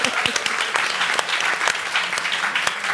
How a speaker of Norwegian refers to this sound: Ja, vi kan klappe for det.